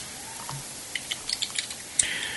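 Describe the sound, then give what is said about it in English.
A quick run of sharp clicks and taps from typing on a computer keyboard comes through in an irregular rhythm, fairly soft, followed by a brief brighter hiss at the end. “Stop typing so goddamn loud.”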